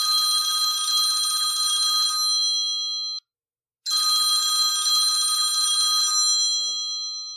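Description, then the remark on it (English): A telephone bell rings loud in two long, rattling bursts separated by a brief pause, the second ring trailing off; no voices. “The day was finally drawing to a close after a light dinner of leftovers when the phone rang.”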